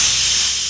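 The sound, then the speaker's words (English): A single loud, sharp hiss from a stray cat, breathy, bright and airy, sustained for under a second and fading slightly toward the end, with no voices. “Stray cat.”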